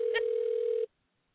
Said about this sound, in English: answer your phone now. Please.